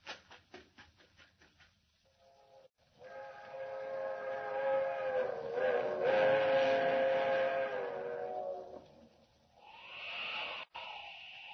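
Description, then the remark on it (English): A train travelling fast whistles for the highway, one long, sustained, harmonic blast that swells loud and then fades, preceded by rapid rhythmic clacking and followed by a rushing approach noise. “She's whistling for the highway.”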